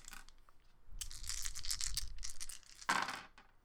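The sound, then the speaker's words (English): A new set of tabletop dice clatters and rattles across a tabletop for about a second and a half, followed by a sharper burst of clacking. The sound is fairly loud, with no voices. “I want you to hear these nice dice sounds.”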